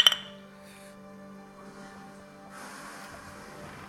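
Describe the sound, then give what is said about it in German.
Glasses or bottles clink together in a quick toast during a boat trip down a river, a bright ringing chime right at the start that fades into a quiet hum, with some soft rustling and movement afterward. “Prost.”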